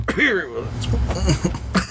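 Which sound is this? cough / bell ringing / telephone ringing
cough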